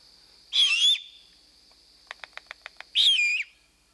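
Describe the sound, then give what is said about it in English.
Two harsh, raspy screeches from a young owl begging, each about half a second long, separated by a quick run of seven sharp clicks. No one speaks. “Can you play that screech one more time for sure. us, just so the folks that heard it?”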